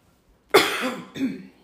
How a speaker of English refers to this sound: She's still coughing, everybody. Sorry.